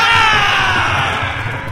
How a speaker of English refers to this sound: A shrieking caravan bursts forth from the kitchen's double doors like a mortar round, scattering guests like ninepins. They are armed with the most fearsome of weaponry. Pots, pans, cudgels, and...